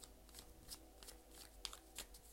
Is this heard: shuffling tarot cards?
yes